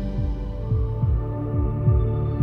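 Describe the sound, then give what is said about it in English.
A deep, steady heartbeat thumps at a regular pulse, low and prominent, inside an instrumental song carried by sustained humming tones and droning instrumental layers, with no voices. “Listen to the heartbeat.”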